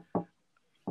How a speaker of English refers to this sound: So, hold up. I hear a knock at the door, man.